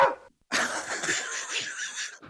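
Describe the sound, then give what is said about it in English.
A person makes a rough, raspy vocal imitation of a dog barking, one long gravelly burst after a brief short sound, with no other talking. “Woof, woof.”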